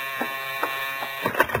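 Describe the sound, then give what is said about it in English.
A buzzer summoning a chauffeur drones with a steady, harsh electric hum, pulsing slightly louder about every half second before a rougher cluster of bursts near the end. No one speaks. “Nothing happened for nearly an hour, and then I got my first buzz.”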